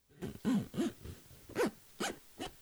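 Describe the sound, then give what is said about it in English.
A voice imitates a long zipper on a pair of pants, or an Xbox Series Elite Controller 2: a quick run of about six raspy, buzzing bursts, some with a rising-and-falling voiced tone, repeated in an uneven rhythm at a moderate level. “It's either my Xbox Series Elite Controller 2 or a really long zipper on a pair of pants.”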